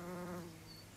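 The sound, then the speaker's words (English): A solitary bee buzzes in flight, a steady droning hum that is loudest at first, then eases off and wavers. No voices are heard. “Many of our native solitary bees are mining bees, who dig out little holes in hedge banks and sandbanks, then construct a nest inside this micro-burrow.”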